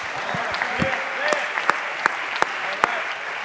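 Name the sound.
audience clapping hands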